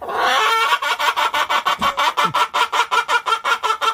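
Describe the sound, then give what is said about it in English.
A chicken clucks loudly in a fast, steady stream of short pulses, almost like cackling laughter, running continuously with no voices present. “The chicken, he's laughing.”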